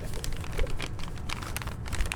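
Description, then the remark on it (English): Crisp, irregular crinkling and rustling of newspaper pages being handled, with short bursts of crackle over a low background rumble and no talking. “I'm just looking for clues in this paper. You mean the newspapers that you stole from Curio Cove?”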